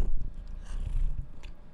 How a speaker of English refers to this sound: I really hope you guys could hear that little purr from her.